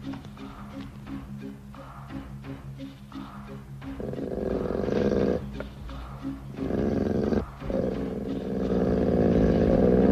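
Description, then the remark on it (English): A dog growls, starting as a low, pulsing rumble and then swelling into a loud, continuous snarl broken by a couple of brief pauses. “Come on, dog. Come on. I want to talk to you.”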